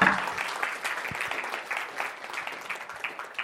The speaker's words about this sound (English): We can give our team a round of applause.